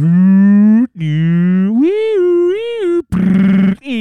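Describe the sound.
A voice imitates police sirens heard late at night from a big main road by a school, with long, drawn-out wails whose pitch slides up and down in rising and falling sweeps, followed by a short, harsh, raspy burst at the end.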